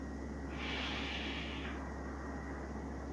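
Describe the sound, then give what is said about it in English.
A single deep inhale, soft, drawn in for about a second over a faint, steady low hum, with no talking, taken at the start of a guided meditation session. “And so as you are settling into our session, I invite you to take a deep breath in.”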